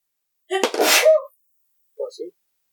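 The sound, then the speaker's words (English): A person imitates a large animal snorting: one loud, harsh, breathy blast, then after a short pause two quick, softer nasal grunts. “and this sound, this snorting, is kind of continued moving around them when suddenly they hear a loud hiss off behind them from where they came, and then they hear three large snorts”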